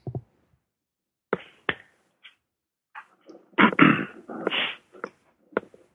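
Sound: sneezing fit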